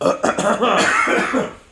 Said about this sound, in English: Double throat clear. I figure I may as well get one out there while you're doing it.